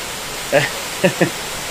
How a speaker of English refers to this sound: Yeah, I don't know if you can hear us okay. It just started pouring outside. We haven't experienced this on our podcast.